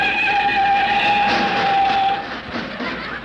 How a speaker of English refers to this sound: Rochester! Don't look at me. Mr. Benny stepped on the brakes.